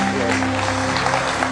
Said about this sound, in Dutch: Come on, let's give it up. Kom op, laten we een groot applaus geven.